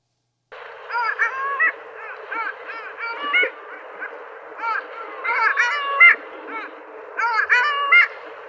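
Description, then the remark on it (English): Long-tailed ducks wintering at the Jersey Shore yodel in a lively chorus, their nasal, rising-and-falling calls overlapping in quick bursts against a steady background hiss, with several birds calling at once. “Well, this cute yodeling call is made by one of the most attractive ducks to visit the Jersey Shore during the winter. It's the long-tailed duck.”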